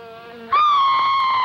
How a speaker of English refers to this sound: The fly is on its way. Watch out for it.